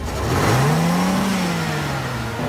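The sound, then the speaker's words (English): A car engine revs hard, its pitch climbing and then holding steady as the vehicle pulls away, loud and continuous with no voices. “Hey, stop that car!”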